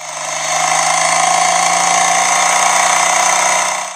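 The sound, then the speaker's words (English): Engines of a couple of motorcycles roar loudly and steadily, a dense rumbling drone that swells in quickly and holds strong throughout, with no voices; the motorcycles, followed by a moving truck, are pulling up to a small gray house down the street. “It was a couple of motorcycles, followed by a moving truck pulling up to the little gray house”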